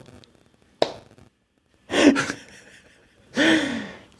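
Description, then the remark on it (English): A sharp click, then a loud breathy gasp-like intake and a second forceful, noisy burst with a voiced edge, like a sneeze building and releasing. No talking is heard. “I'm gonna sneeze.”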